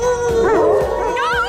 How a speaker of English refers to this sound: Quit it. You're gonna start a howl.